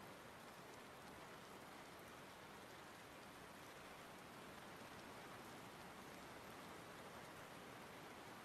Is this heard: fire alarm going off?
no